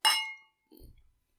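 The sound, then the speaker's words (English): A single bright clink of glasses of red wine touching in a toast, a ringing high tone that fades within half a second, followed by a brief low knock or shuffle. “Cheers. Cheers.”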